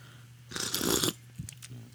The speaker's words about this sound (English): Sorry, I had to take a little slurp of coffee there.